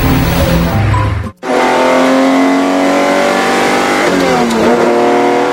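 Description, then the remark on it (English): A classic Italian Giulietta sports car engine revs loudly, cutting out abruptly for a moment before roaring back with rising, harmonic-rich acceleration and a brief shift in pitch near the end. “Whether in the city or out on the open road, they compelled you to run flat out.”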